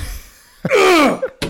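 A heavy door gives way under a battering ram: a dull thud, then a loud, sliding wooden creak and groan, followed by two more quick knocks. No one speaks.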